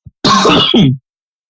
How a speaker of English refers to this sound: I was trying to hold the cough.